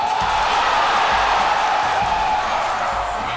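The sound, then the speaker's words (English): A large crowd at a hockey game roars during a fight, a collective guttural roar in a dense, steady wall of noise, loud and sustained throughout, with thuds faintly underneath and no individual voices standing out. “It's kind of a collective guttural sort of a roar. You know, it's a different sound coming out of the crowd than when a goal is scored.”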